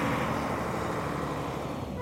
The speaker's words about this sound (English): The trucks roll out, headed for the border.